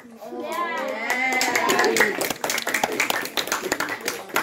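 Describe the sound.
A sixth-class group of schoolchildren at St. Killian's in Mullagh, Cavan, cheer with rising, high-pitched shouts at the mention of Paddy's, a local shop. A burst of quick, uneven clapping then takes over, loud and scattered, with a few cries mixed in.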